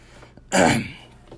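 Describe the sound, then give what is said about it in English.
A single loud, harsh cough bursts out, rough and throaty, lasting about a quarter second before fading into quiet room tone. “and got a little bit of cough, but anyway, back to the thing I was saying...”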